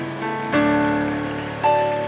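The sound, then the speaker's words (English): A church audience claps steadily for the Lord, the crackle of many hands blending under sustained keyboard or organ chords that shift twice with bright new notes. “Clap for the Lord.”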